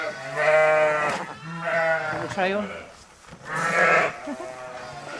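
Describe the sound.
Newborn lambs, born that morning, bleat repeatedly, several wavering, high cries overlapping in quick succession, with a person briefly speaking between the calls while the lambs are given iodine and tube-fed beestings.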